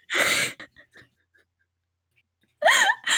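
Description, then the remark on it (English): A voice imitates Michael Myers's heavy, rasping masked breathing: one long, loud hissing breath, a pause with faint clicks, then a second breath with a throaty, wavering edge, unaccompanied. “He's just sitting there like heavily breathing as he's, they have to remove the mask.”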